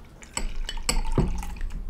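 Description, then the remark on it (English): Beer splashes and trickles into a glass, with a few sharp clinks of glassware mixed in over roughly two seconds of steady pouring. “Because we could pour more, right?”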